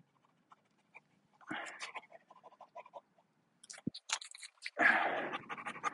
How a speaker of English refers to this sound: So just giving my dog some water.